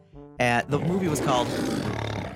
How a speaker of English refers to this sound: 92 years ago today, the year was 1928. The MGM Lion. Roared for the first time at the beginning of the studio's first talking movie.